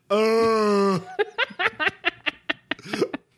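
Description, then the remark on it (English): A woman's scream, loud and steady, holds for about a second, then breaks into a run of short, choppy vocal bursts like gasping or laughter. “… has a great scream.”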